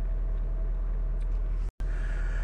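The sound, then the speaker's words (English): Steady, droning low rumble of road and engine noise inside a moving car, constant in level throughout, broken only by a brief instant of silence near the end. “I said I was going to keep this podcast short today as I was in the car and driving”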